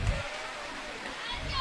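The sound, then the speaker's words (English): Steady rain, coming down a little heavier, drums on the tin roof above the Hudson home side during a baseball game: a dense, even hiss of countless tiny impacts that holds at a constant moderate level without pause. “If you can hear the tin roof above us here on the Hudson home side.”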